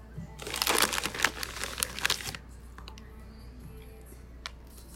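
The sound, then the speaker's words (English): Crisp, crackly crunching from bites of a pretzel snack, a rapid burst of crunches lasting about two seconds, then fading into quiet chewing with a few faint clicks. “They need to hear this crunch. These are what these sound like.”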